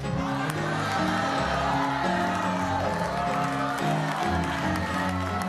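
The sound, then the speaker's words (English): An audience shouts and cheers together in a loud, sustained roar, with musical tones sounding beneath the crowd noise throughout. “And then for the person that really feels they got the victory today, I want you to just lift your hand and shout.”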